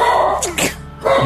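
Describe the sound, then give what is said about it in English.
A dog gives a quick pair of sharp, husky barks in a row, loud, with a steady hum underneath and a brief quiet after. “Your dog disagrees with me.”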